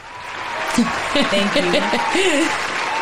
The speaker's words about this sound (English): Thank you. A round of applause for this.